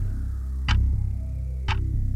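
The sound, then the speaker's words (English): A quiz countdown clock, timing a 60-second round of seven questions, ticks twice, exactly one second apart, each tick crisp and bright over a low, steady droning bed with no voices. “Let's see how many of the seven you get correct in 60 seconds. Clock starts after I ask the first question.”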